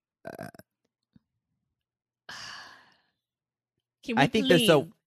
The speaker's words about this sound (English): Like, okay, I have to belch. I had a macchiato.